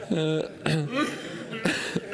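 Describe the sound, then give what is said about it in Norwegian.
A few short, sharp coughs from someone, spaced out over a couple of seconds and mixed with brief voiced, chuckle-like sounds. “hoster.”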